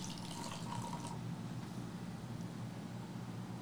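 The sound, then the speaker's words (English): The last of a wild-fermented cider is thrown into a glass in a bright, hissing pour lasting about a second, then fades into a soft, steady fizz with no talking. “She threw it in her glass, the last, the best.”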